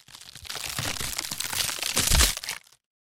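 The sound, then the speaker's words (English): Dense, sharp crackling and snapping of branches breaking for a few seconds as the branch cover of a Burmese tiger pit gives way, building to a louder crunching collapse near the end before cutting off into silence. “Then I heard the sharp crackle of breaking branches. The cover of the pit gave way.”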